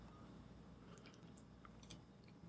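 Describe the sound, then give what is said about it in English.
Wet mouth sounds of someone sipping coffee and swallowing loudly into a microphone: soft slurps and small liquid clicks over a low background hum, with no talking. “I'm a loud swallower, apparently. It comes up really high on the microphone, so I apologize for that.”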